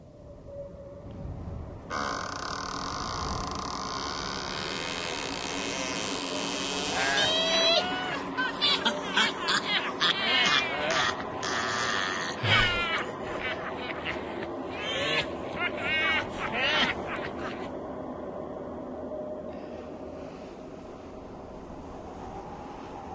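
A spooky Halloween night sound effect played by a voice assistant's sound feature: a steady windy hiss rises in, then eerie wavering cries and shrieks, almost like yowling animals, sound repeatedly through the middle before the ambience fades down.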